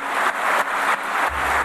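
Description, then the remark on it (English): A crowd applauds and cheers as Boris Johnson is announced as elected leader of the Conservative and Unionist Party, with Jeremy Hunt among those cheering. It is a loud, dense wash of clapping that holds steady throughout with a few brief swells. No one speaks over it. “Well, there you have Jeremy Hunt cheering the new leader of the Conservative Party.”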